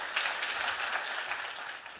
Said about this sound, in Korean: 우리 한번 크게 환영하고 박수하겠습니다.